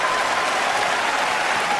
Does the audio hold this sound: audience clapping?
yes